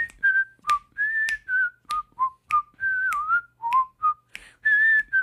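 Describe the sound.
The whistled theme tune of the TV show The Andy Griffith Show: a bright, jaunty melody of short and held notes, clear and steady, with sharp clicks between phrases and no talking.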